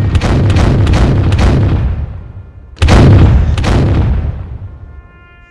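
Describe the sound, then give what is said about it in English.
A short jingle of cannon fire: a quick volley of booms, then two heavy blasts that ring out and fade, finishing with a few buzzy raspberry sounds at the end. “I like the little razzes at the end.”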